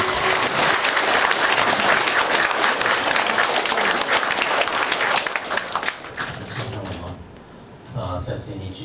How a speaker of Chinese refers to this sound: 那么下面请大家全体起立，用最热烈的掌声有请索达吉堪布。